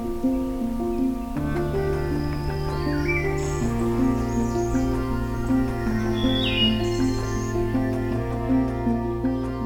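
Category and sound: bird, wood thrush singing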